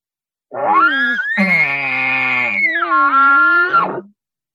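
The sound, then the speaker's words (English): A voice imitates an angry bull elk locator bugle, a whip ball call, shaped in the mouth by tongue pressure: a loud, sustained nasal squeal about three and a half seconds long, rising, holding a strained high pitch, then dipping and flaring again before cutting off, with no talking. “This one's a whip ball. When it's super mad, or just when it's telling its cows to just get back to the herd.”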